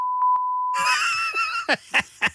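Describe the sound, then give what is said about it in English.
A steady, high-pitched censor bleep holds for under a second, then gives way to a loud, harsh burst of sound ending in three sharp, rhythmic pulses. “They're going to be using that beep machine a lot if you continue with this.”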